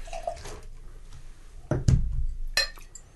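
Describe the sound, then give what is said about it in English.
Liquid splashes and gurgles as an unfinished beer is poured out, with a few dripping sounds and a light clink of glassware, moderately loud, no talking. “All right, I'll pour this out.”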